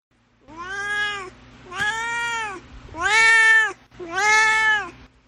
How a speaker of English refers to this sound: Now it's time for Dorothy's Corner, where my cat Dorothy shares his opinions on the book.